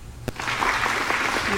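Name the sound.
polite applause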